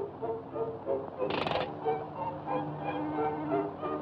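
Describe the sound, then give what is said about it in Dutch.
A cartoon goat is made to play like a music box, its bleats coming out as a string of short, tuned notes in a steady melody, with a brief noisy burst early on. “Hier de geit in een speeldoos.”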